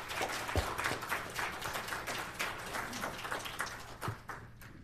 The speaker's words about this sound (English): And it's a real big deal that he came all the way out to Hillsdale to speak with us, taking time out of his day fighting tyrants and driving about an hour. So let's just give him a round of applause and thank him for coming out.